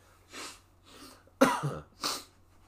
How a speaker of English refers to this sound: But yeah, excuse me for a sec, guys. I think I got a sneeze. Typical night. Wouldn't be a podcast without some sneezing and some hay fever, so.